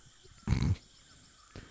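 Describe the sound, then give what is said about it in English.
A short, loud, gravelly roar bursts out once, a voice imitating a lion, followed by quiet and a faint thump near the end. “Oh, the lion's coming back”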